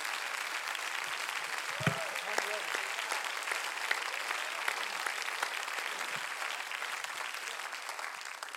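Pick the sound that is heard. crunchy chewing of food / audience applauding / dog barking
audience applauding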